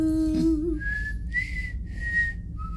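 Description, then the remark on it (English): A short hummed note gives way to a clear whistled tune of four sustained notes, rising then falling, whistled steadily with a soft background hum. “I sang it because I can't whistle.”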